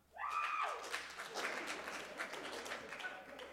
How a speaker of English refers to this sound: If you know exactly what I'm talking about, please clap. Now, if you are one of those people, if this has broken you in a way that no song has broken you in quite some time, please clap.